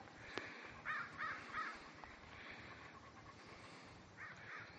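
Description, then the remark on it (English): A crow caws in a quick series of three harsh calls, then two more a few seconds later, over steady outdoor background noise. “Hello, Crow.”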